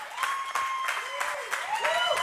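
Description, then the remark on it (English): An audience at a Sunday church service applauds with dense, steady clapping, while rising and falling high tones like whoops or cheers sweep over the noise throughout. “I was really expecting the applause just continue on for like 20 seconds.”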